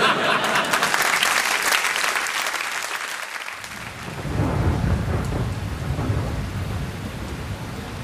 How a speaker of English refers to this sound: Now, come, let's go into this pub. We'll wait for the rain to ease off.